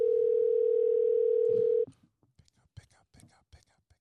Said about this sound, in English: Answer the phone, love. Let's see if we can get her. Really phoning a friend right now.